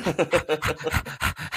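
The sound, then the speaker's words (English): A person imitates a dog's panting with quick, breathy huffs, about eight in rapid even rhythm, moderately loud with no talking. “I just pretend to talk like a dog because it gets me the pussy.”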